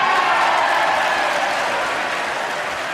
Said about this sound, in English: And the whole, you know, all the congregation, all the lawmakers stood up and applauded.